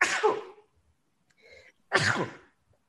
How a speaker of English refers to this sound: But I need to sneeze. Go ahead.